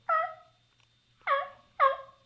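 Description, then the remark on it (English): A voice imitates a hen turkey's yelp: three short, raspy, harmonic notes, one alone and then a quicker pair, each dropping slightly in pitch, with no talking. “I'll yelp twice and kind of just stand there. And, acting like a little lost hen, man.”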